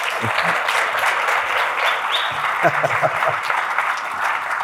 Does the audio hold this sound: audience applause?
yes